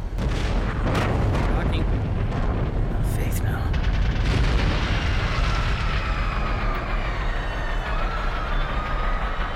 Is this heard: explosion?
yes